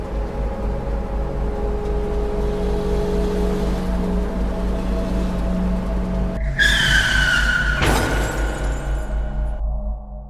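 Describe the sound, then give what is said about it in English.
A heavy truck's engine rumbles steadily, then tires let out a loud, shrill screech as the truck skids and runs into a man, broken by a single sharp crash before the squeal fades out. “He recently passed away due to a truck running into him.”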